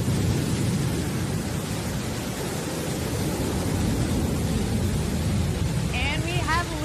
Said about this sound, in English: Go, New Shepard, go. Beautiful liftoff from our launch site 1 in West Texas.